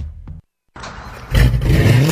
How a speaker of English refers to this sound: Man, that car sounds good. Oh, you know, it's just that Carnage exhaust I got at Troy's Muffler.